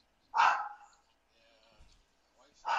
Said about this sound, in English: You need to do something with your dog barking like crazy.